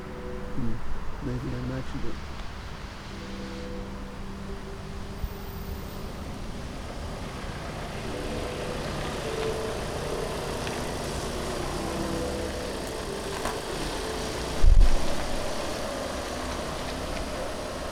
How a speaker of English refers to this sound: That was a beautifully executed three-point turn by that rather aged but lovely white van there.